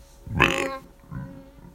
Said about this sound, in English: And I believe, oh, excuse me about a burp.